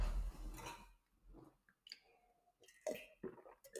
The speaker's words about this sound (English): And for those who are listening and not watching, that was water I was drinking. That was water. That was water.